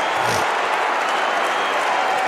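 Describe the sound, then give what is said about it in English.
A St Helens (Saints) crowd jeers angrily during the second half of a match against Wigan, a dense, steady roar of many voices that stays loud and unbroken throughout, with no single voice standing out. “And the crowd, the Saints crowd, getting very salty there.”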